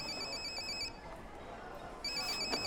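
A phone rings in a food court in two bursts of high, steady electronic tones, separated by a short pause, heard over a faint background murmur.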